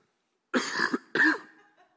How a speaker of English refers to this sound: You just mute my mic for a second. I'm going to cough.